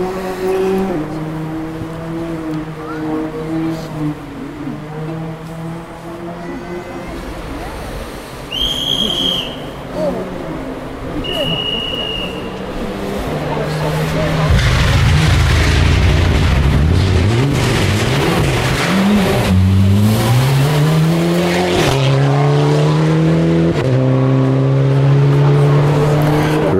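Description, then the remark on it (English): A Mitsubishi Lancer Evolution (9 or 10) rally car engine buzzes from far off, rising and falling through gear changes, then grows much louder into a roaring, revving pass with swooping pitch before settling into a steady high drone. “Distant sound of a rally car getting closer and louder.”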